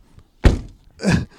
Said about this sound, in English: Let me close this door. Hold on.